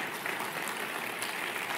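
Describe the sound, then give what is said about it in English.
A crowd applauds steadily, many hands clapping at once into a dense, even patter that holds at a constant level with no voices on top. “Yeah, that's something to clap for, and I would clap loud.”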